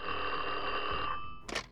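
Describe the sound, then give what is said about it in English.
A telephone bell rings in one continuous metallic trill, fairly loud, then cuts off and is followed by a brief clattering knock. It is a phone call to Frankie Yale in one of his clubs on July 1, 1928. “On July 1st, 1928, Frankie Yale was going about his daily routine in one of his clubs when he got a strange phone call.”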